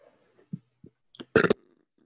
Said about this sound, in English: Also, I should say I'm sick, so like I'm not sick, but with the sinuses and everything, I'm breathing through my mouth, so there's just a lot of air and stuff. So it makes for a lot of burping.